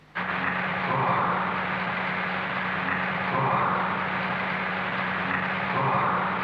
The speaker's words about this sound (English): The humming in the background is the fans of electric heaters warming the building.